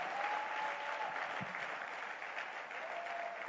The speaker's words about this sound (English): Give the Lord a wonderful clap of praise.